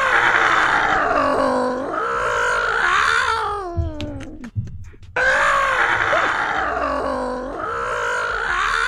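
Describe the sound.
A man's voice imitates a cat in heat, drawing out long wavering yowls that bend up and down in pitch, breaking briefly into a few rough grunts before resuming the loud, moaning caterwaul.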